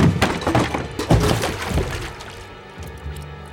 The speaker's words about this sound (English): He threw open the door, and something heavy struck him across the forehead. Ah!